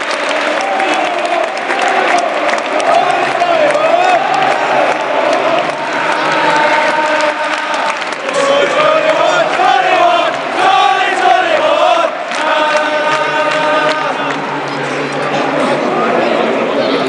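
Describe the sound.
A large football stadium crowd sings a young player's name in a rhythmic chant in unison, voices swelling and blending into a loud, continuous roar with clapping mixed in throughout.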